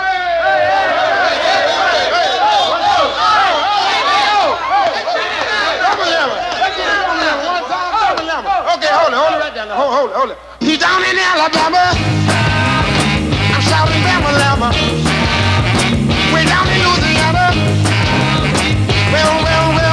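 An upbeat soul song plays loudly, opening with an energetic lead vocal over light backing before the full band with driving drums and horns bursts in halfway through.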